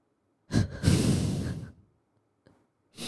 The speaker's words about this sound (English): And then when you breathe, this is breath work. Okay, when you breathe, you shouldn't have any unnecessary pauses. So you breathe like that. It's a little bit faster, but don't hyperventilate.